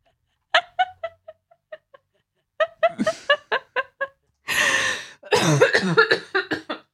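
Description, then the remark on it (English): A person laughs in short bursts that tip into a loud, harsh coughing fit triggered by the laughing, several rapid hacking coughs with breathy gasps between them. “That's the cough syrup laughing. Oh, laughing's a trigger.”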